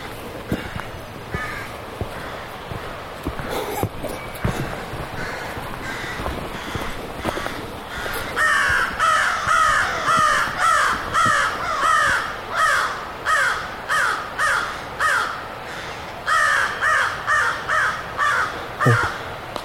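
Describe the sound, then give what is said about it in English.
Crows caw in a loud, harsh series, the calls coming in a steady, rapid rhythm after scattered earlier squawks and rustling. Nobody speaks. “Apparently crows are extremely smart.”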